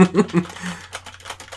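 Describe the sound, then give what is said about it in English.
A few quick keyboard taps click in an uneven rhythm, fairly soft, right after a short burst of voice at the start. “Typing some things.”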